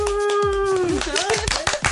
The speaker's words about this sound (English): Yeah, that was a good clap.